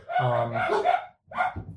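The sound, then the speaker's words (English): A voice imitates a bunch of dogs waking up, barking and yowling loudly, in a long drawn-out burst followed by a brief pause and a shorter second burst. “Wakes up a bunch of dogs.”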